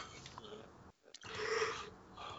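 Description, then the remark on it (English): A drawn-out yawn: a breathy inhale, a brief pause, then a swelling, voiced exhale that rises and fades over about a second. No speech. “Oh, sorry, I am yawning big time tonight.”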